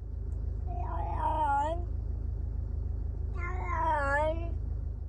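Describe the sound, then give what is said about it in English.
Two long, drawn-out meows from a female cat recorded in a car, with wavering pitch, a second or so each with a pause between, over a steady low car engine rumble. “Right, I recorded her earlier in the car, right?”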